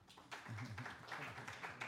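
Brief, fairly faint applause from a group, a loose patter of claps lasting under two seconds, with some murmuring voices mixed underneath.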